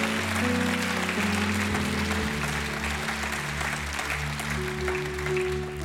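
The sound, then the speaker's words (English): An audience claps their hands for God in a steady, dense burst of applause lasting several seconds, with a low sustained organ-like tone humming underneath. “If you've been healed tonight, give God a hand clap, and every sinner in the house that's coming to Christ, you've been healed.”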